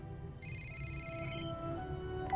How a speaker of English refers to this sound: So during this whole science montage, Peter's phone keeps ringing, and he looks at it, and Kurt says, "You need to take that."